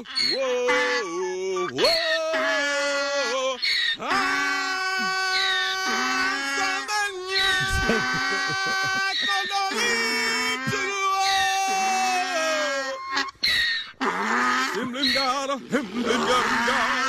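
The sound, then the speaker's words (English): A donkey brays repeatedly alongside a man singing a song from The Lion King, loud wailing, honking cries rising and falling against the sustained melody, with brief pauses between phrases throughout. “He said it had never done anything like that before, and he was just going to sing the beginning of the song, but the donkey started chiming in, so he decided to keep going with it the whole time.”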